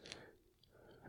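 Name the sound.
chewing candy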